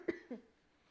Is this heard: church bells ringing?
no